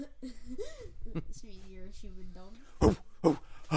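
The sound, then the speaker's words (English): A dog, Odin, whines in wavering tones, then lets out three sharp, loud barks in quick succession near the end, barking at passing cars and the rubbish truck, with no other sounds around it. “They love barking at the rubbish truck.”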